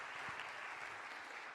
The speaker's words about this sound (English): And can we give one more round of applause for all our preach-its this evening?